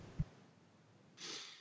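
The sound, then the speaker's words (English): A short, forceful nose blow: a brief low puff followed by a breathy, hissing blast of air lasting about half a second, moderately loud, with no talking. “I gotta blow my nose.”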